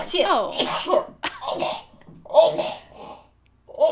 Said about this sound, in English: Oh, God. Sorry. We should open the next episode with you sneezing and just be like, she was still sneezing.